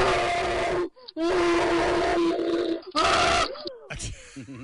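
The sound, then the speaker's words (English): A voice moaning in sexual pleasure: loud, drawn-out vocal moans broken by brief sharp gasps for breath, with no spoken words. “I'm gonna go with Cream. And you're correct, sir.”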